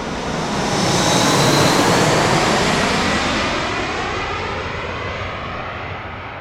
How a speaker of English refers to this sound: Jeez! I thought that was gonna take the roof off. You're having a hard enough time with this place. Those planes can't be helping any.